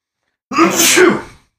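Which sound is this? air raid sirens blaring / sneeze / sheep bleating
sneeze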